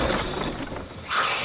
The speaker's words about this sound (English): Now wait a minute, what is that? Our Mama Jamma spied as something big crashed through the school that she lived right beside. Wait, I don't remember this part of the dance. Tis I, almighty Dracomax, the dragon lord on high.